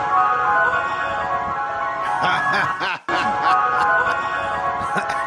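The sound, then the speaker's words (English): Ice cream truck jingles play loudly and continuously from at least 25 ice cream trucks in a funeral procession, their tinny melodies overlapping, with a brief rumble and momentary dropout partway through. “At least 25, I think, ice cream trucks showed up. They're led by in the funeral procession.”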